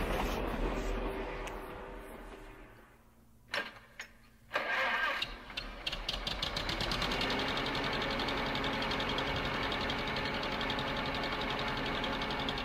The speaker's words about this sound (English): Is that a... It's a car. Oh, okay. I was gonna guess like a lawnmower or a plane.